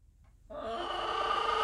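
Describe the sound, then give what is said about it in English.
After a brief quiet moment, a chicken named Bertha at the door lets out a loud, drawn-out squawking call, its harsh cry growing slightly louder as it continues. “I'm gonna beat this chicken.”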